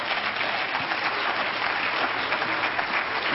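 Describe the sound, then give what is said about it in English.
A crowd applauds steadily, a dense, even wash of many hands clapping that holds at a constant loudness for a few seconds with no voices. “Now, that's where you ought to clap.”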